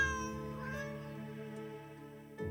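A kitten lets out one long, drawn-out meow, clear, holding steady before trailing off, with the start of another meow cutting in right at the end. No one speaks.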